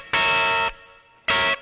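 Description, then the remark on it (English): A distorted electric guitar mimics a car horn with two loud, buzzy honks: a long blast, a short pause, then a shorter one. The tone is harsh and sustained, with no talking. “How do I honk with a guitar?”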